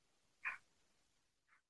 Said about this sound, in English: So sorry, guys. My dog is – this is what happens when you record podcasts at home. They're the big fan of the podcast. I like it. Yeah, she's kind of freaking out right now because the maintenance men are like over there.